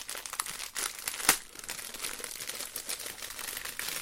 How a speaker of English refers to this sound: It's pretty heavy, whatever it is. It's wrapped in plastic and then in paper, so I don't even know what it is, so I'm going to have to open it.